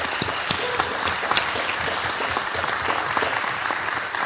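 An audience applauds steadily, a dense wash of many hands clapping at a fairly loud, even level, with a few sharper claps popping out of the crowd noise.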